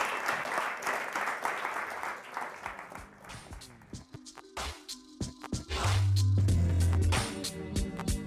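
Dense applause from an audience at an afternoon storytelling event for a speaker on stage fills the first few seconds, then thins to scattered claps while a low steady tone and musical notes rise underneath toward the end.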